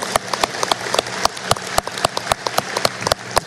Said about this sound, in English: So I think it's a kudos, and let's just give everyone a round of applause for that work.